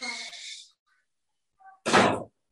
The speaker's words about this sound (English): Out. Close the door.